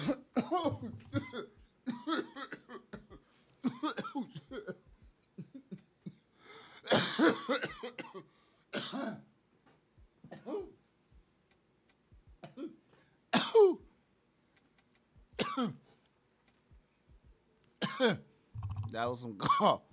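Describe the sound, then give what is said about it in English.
A heavy coughing fit: repeated harsh, chesty coughs come in bursts over about twenty seconds, loud, separated by short pauses and strained breaths. “That was some cough up a lung shit right there for real”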